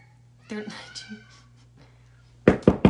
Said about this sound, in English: I've got to knock on my door so that they know that I'm actually doing something in here, and hopefully they hear me.